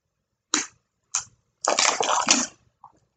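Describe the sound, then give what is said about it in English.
Someone takes a sip of water: two short wet slurps, then a longer gulping stretch and a faint swallow at the end. No one speaks. “I had to take a little water, I'm sorry.”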